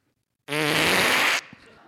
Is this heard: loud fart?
yes